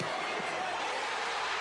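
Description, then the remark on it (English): A stadium crowd at Kyle Field in College Station roars in a dense, steady wash of noise that stays loud and unbroken throughout, with no single voice standing out, as Texas A&M beats Alabama and fans storm the field. “The crowd will tell you what happens.”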